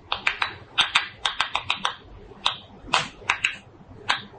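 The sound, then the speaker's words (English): A stressed tomato plant, as a tomato is being pulled from it, gives off a quick, irregular run of sharp, bright clicks and pops, some bunched close together and others spaced apart, with no voices and no other sound. “This is what a tomato plant sounds like as it's stressed out, as a tomato is being pulled from the plant.”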